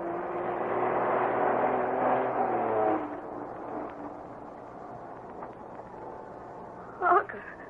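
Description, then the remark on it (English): A slow-moving truck, dripping blood, coming down a narrow road from an old silver mine: its heavy engine rumbles at low speed, droning loudly for a few seconds before easing off into a quieter, steady idle-like hum, with a brief sharper noise near the end. “Led by Bobby, Harker and Irish are headed for the old silver mine, thought to be abandoned, but now Bobby and Harker have spotted a slow-moving truck coming down the narrow road from the mine.”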